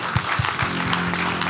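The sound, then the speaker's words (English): A church audience claps hands together in a dense, steady burst of applause, many overlapping claps filling the space with a few stronger thumps early on. “Clap your hands for him.”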